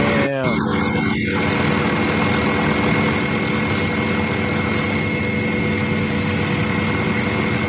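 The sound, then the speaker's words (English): A steady, loud engine drone of an airplane from Paris fills the whole stretch, a constant low roar with a thin whining hum on top that never rises or fades. “But here's how big the plane was from Paris.”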